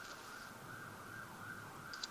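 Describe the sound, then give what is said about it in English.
A faint ambulance siren wails steadily in New York, its tone rising and falling slowly over a low rumble of city noise, with no one speaking. “That is the New York ambulance. I think it's picking it up.”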